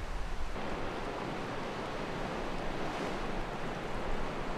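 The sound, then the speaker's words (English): A river roars steadily through a rocky sluice pool beside cliffs, a dense, continuous rush of churning water with a deep low rumble and hissing spray, unbroken, with no voices. “It just sort of magnifies the sound of the river, the roar of the sluice pool.”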